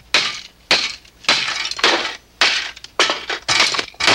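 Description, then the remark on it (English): A toy mallet repeatedly bashes pieces of a wooden toy construction set, about seven sharp, clattering blows in an uneven rhythm, each with a brief splintery rattle. The sound is fairly loud, and no one speaks. “And he focuses in on a little wooden toy construction set, picks up a toy mallet, and starts smashing everything.”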